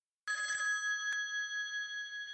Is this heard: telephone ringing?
yes